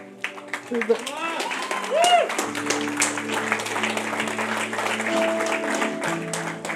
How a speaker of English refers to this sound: You know, this is exciting, isn't it? Yes. That was a really rubbish clap, but it is exciting, isn't it?